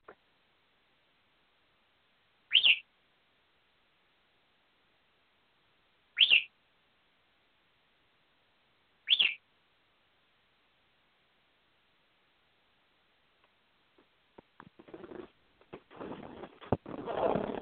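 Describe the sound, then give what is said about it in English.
A pet bird screaming to go to bed lets out three loud, shrill screeches spaced a few seconds apart, then rustling and handling noise builds toward the end. “All right, Sunbird, I know you're screaming to go to bed.”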